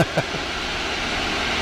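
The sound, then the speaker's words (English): A steady, loud drone of a small Cub airplane engine fills the cockpit, constant and unbroken, with a brief murmur of a voice at the very start, as the plane flies up after leaving Concord, North Carolina, outside Charlotte. “Yeah, so we are flying up. We just left more or less Concord, North Carolina, outside of Charlotte.”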